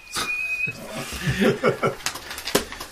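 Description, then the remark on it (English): A thin, steady high-pitched whistle, blown off in the distance, sounds briefly near the start. It is fairly faint and gives way to rustling and clattery activity with some vocal noises. “You guys can hear a high-pitched whistle.”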